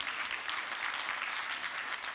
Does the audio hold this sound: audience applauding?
yes